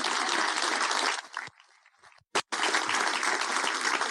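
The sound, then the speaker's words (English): An audience breaks into loud, dense applause, fades to a brief lull with scattered claps, then surges back into sustained clapping until the end. “Yeah, there's an applause there.”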